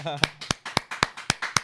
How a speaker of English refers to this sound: Wow, applause in the studio. That's crazy.